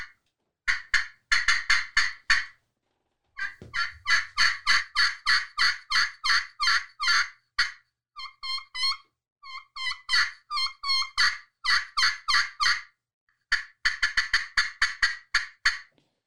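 A turkey glass call is worked through quick runs of raspy, high-pitched hen yelps, broken by short clucking and purring patches. Loud and steady with brief pauses, and no talking.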